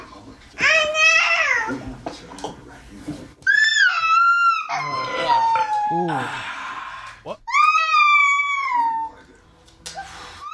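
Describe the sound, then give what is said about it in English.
A recording of a young child crying in loud, high-pitched wails, three long bursts separated by short gasps, each wail starting shrill and sliding downward in pitch. “when my kids would cry, get something out of it a bit, I'd just record their crying”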